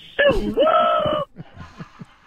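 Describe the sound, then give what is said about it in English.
A male caller lets out a loud, whooping rebel yell lasting about a second, pitched high and wavering, followed by quieter scattered voice sounds. “Thanks for the rebel yell at the end.”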